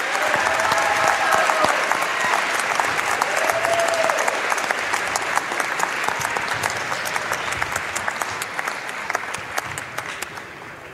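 Loud, sustained applause from a crowd, a dense wash of clapping that stays steady for about eleven seconds, with a few faint whistles or cheers rising early on before it slowly tapers.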